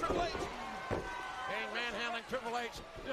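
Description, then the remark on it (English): Several heavy thuds of feet stomping on a hard floor land at irregular intervals, fairly loud, while people talk over them. “Foot stomp.”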